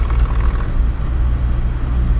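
A steady, loud low rumble of a car in motion, with continuous engine and road drone filling the whole stretch and no voices.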